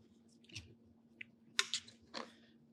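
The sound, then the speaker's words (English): Chewing of crisp bacon cooked with fire and topped with a bright red sauce, a few crunchy, irregular bites with wet mouth sounds, fairly quiet, with no talking, as a man tries to chew silently away from the microphone. “is chewing like an absolute gentleman.”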